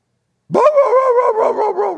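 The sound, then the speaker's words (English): A bloodhound bays on the scent, a loud, drawn-out howl that starts abruptly and wavers in pitch for about a second and a half, with no talking over it. “Like a bloodhound dog, right? It's all the time sniffing, sniffing, sniffing, sniffing. And when it gets on the scent, what does it do?”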